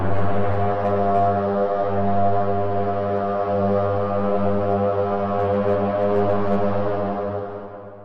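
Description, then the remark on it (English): A horn is blown in the distance, echoing: one deep, long, steady, droning note rich in harmonics, holding loud for about eight seconds before tapering off at the end. No voices are heard. “Both of you hear echoing in the distance the sounds of a horn being blown.”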